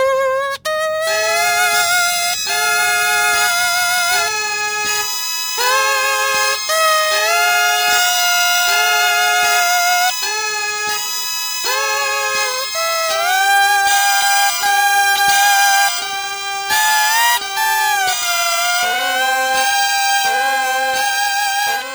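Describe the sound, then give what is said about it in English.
A stretched latex balloon played like a reed instrument, the rubber stretched to get different sounds, giving loud, buzzy, sustained tones that step and slide between pitches in a continuous melody, with no one talking. “What we're listening to here is she's using them as a reed instrument, stretching the rubber to get different sounds.”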